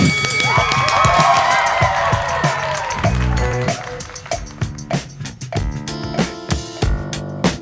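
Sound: applause and cheering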